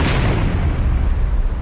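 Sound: explosion boom sound effect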